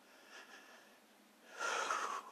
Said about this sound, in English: Bless you. Excuse me.